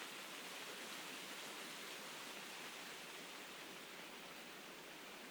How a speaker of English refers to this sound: You can hear the birch leaves rustling above me.